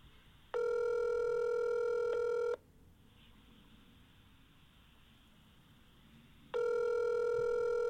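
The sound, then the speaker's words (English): An unsolicited outgoing phone call rings unanswered: a steady electronic ringback tone sounds for about two seconds, falls silent for several seconds, then starts again, with no voices. “All right, so let's call Brett Register and see if we can get him on the line here.”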